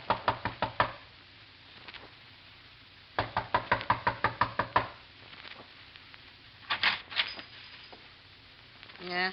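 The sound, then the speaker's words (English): Sharp knocking on a door in two quick bursts of rapid raps, fairly loud, separated by a pause, followed by some faint shuffling. “A knock. You better stand back.”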